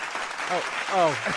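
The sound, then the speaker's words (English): A canned applause effect plays when an applause button is pressed: a steady wash of clapping for just over a second, with a man's voice talking briefly over it. “Thank you for pressing the applause button”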